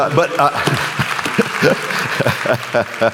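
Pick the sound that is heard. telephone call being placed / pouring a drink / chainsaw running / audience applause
audience applause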